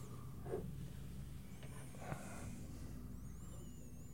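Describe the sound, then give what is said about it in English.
A person smells the contents of a container with its lid off: two short, soft sniffs spaced about a second and a half apart, with a low background hum and no talking. “I'm trying to decide who should get the first sniff.”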